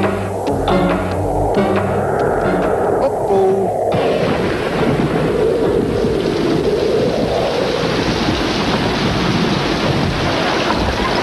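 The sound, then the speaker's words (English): Heavy rain pours down steadily in a loud, continuous hiss, with deep rumbling thunder rolling underneath throughout. “a rain cloud latches on to Dino and it rains on him everywhere he goes”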